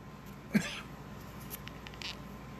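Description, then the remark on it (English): One short, sharp cough from someone smoking a cigar, followed by a softer breathy puff about a second and a half later, over a quiet low background hum with no talking. “As I cough on my cigar.”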